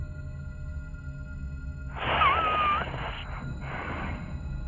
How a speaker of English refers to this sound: Another nose whistle.